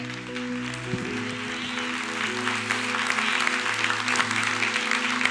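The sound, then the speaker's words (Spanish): A church audience breaks into steady applause, a dense wash of many hands clapping that grows slightly fuller, with sustained low musical tones humming underneath. “Si la revelación se mide por la respuesta del aplauso, la mitad de la iglesia la recibió.”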